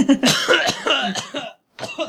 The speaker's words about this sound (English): I'm going to cough for a while.